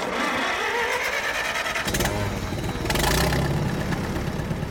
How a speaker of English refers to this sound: Now, Messman is doing something previously unimaginable. He's purposefully flooding his fields. A makeshift pump draws fresh water from an irrigation ditch. It spurts out from a pipe onto the dry ground.